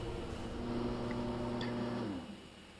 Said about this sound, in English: What are the odds of the lawnmower stopping when you're actually recording and complaining about the outdoor lawnmower?